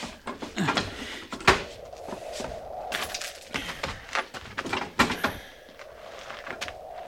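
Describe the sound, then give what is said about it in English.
A door is worked open with a series of clunks, scrapes and rattling knocks, one sharp bang near the start, over a low steady rumble, with no one speaking. “I can manage to the door.”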